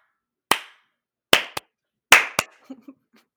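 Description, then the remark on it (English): Sharp hand claps, made at the start of a recording to line up the audio and the video, ring out against silence: one single clap, then two quick pairs, each crisp and loud with a short decay, followed by a few faint low murmurs. “We got to clap to line up the audio and the video.”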